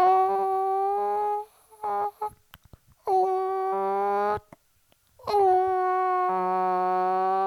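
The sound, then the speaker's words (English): A human voice imitates a chicken in three long, wavering, high-pitched drawn-out calls, with short choppy sounds between them and a brief pause before the last one. “But that's a chicken impression. That's what chickens sound like.”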